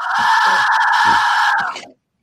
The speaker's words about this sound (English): that's the Mayan death whistle. Oh, that's so cool.